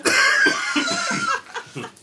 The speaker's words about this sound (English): There, it's contagious, this cough.